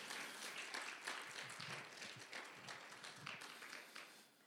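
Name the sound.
audience clapping hands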